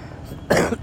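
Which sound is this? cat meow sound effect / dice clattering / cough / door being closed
cough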